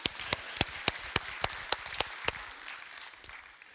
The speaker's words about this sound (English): Yes, I clap for her.